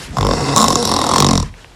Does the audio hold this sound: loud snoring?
yes